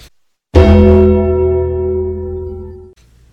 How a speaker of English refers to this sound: I feel like for every update, I'm going to find the Undertaker sound, you know, like the bong when he comes into the ring. So any update will be signaled with one of those.